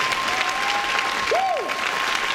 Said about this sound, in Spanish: ¿Habrá alguien aquí que lo pueda hacer? Dale ese aplauso fuerte a Dios. Alábalo. Este es un buen momento para adorarlo.